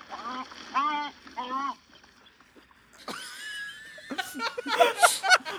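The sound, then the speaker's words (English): An American white pelican near water gives three rhythmic, nasal, wavering calls, followed after a pause by a louder, busier run of grunting and squealing calls. “It is actually an American white pelican, another silent but deadly bird.”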